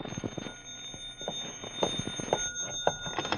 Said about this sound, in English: And then the phone rang.